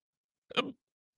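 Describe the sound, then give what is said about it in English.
A single short, sharp hiccup, a quick voiced gulp lasting about a quarter second, surrounded by silence. “I can't get rid of these hiccups.”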